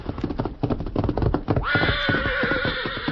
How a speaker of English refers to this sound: Meantime, having returned to camp, the Lone Ranger and Tonto were preparing supper when Dan's horse, Victor, galloped in and stopped.